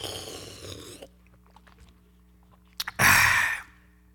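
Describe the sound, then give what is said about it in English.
Someone takes a sip of water: a soft rush, faint wet clicks of swallowing, two small gulps, then a short loud breathy exhale after the drink. No talking. “Let me water my tonsils.”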